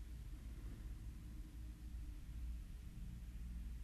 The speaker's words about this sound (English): You You can probably hear some of the cars and trucks driving by in the background.